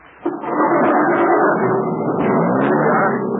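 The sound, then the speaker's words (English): A car engine roars to life abruptly and keeps running loud, a steady, rumbling drone that suggests the vehicle pulling away and driving on. “Hang on. This thing is going to take off.”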